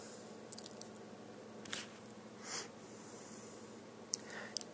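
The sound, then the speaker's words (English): Someone takes a Moen faucet apart: scattered short metallic clicks and scrapes, a few sharp and a couple of duller squeaky rubs, over a steady low hum, fairly quiet, with no talking. “Take the faucet apart.”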